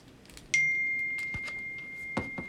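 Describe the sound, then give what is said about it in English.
A phone gives off an electronic tone that starts abruptly, then holds as a single steady high-pitched beep for about two seconds over faint background clatter and rustling. “This is my phone, dear.”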